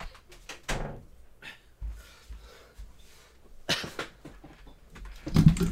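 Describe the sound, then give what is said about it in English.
Small dogs bark at a visiting boxer dog, letting out a few sharp, yappy barks in separate bursts, fairly loud, with quieter household shuffling and clatter in between. “And whenever they show up for at least 5 minutes after he shows up, they got to be barking at him.”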